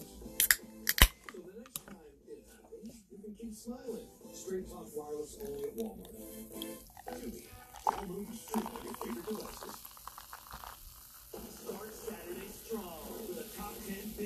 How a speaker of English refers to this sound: let's do a little beer pouring ASMR